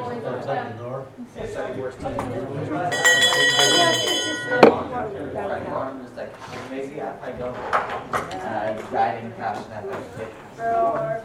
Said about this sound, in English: Okay, I gotta ring the bell. You wanna ring the bell? No? Okay, you can wait.